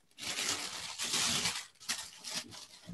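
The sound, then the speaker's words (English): Crinkly paper from inside a box of Jordan 4 sneakers being rustled and crumpled, a steady papery crackle with louder bursts and brief pauses, no talking over it. “The paper on the inside of these.”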